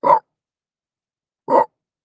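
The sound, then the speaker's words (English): A person imitates a big dog with two deep, loud woofs spaced over a second apart, delivered alone with silence between them. “You gotta do like a big dog.”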